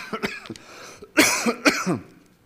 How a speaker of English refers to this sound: if I don't stop coughing, Andrew, you may have to pick up and preach the rest of my sermon